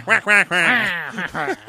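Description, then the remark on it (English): A voice quacks like a duck in a quick run of nasal, buzzy bursts, two short ones then a longer warbling stretch, fairly loud with no other sounds around. “He's the only furry in the world that talks entirely in duck language.”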